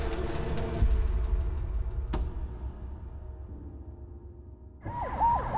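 Low traffic rumble with a sharp knock partway through, then an ambulance siren suddenly cuts in near the end, wailing loudly in quick rising and falling sweeps.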